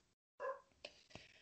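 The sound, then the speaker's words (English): A pet dog whimpers: a brief, high, wavering whine after a moment of silence, followed by a couple of short, soft yelps, all fairly quiet. “And the dog, my dog. See, my child is crying right now.”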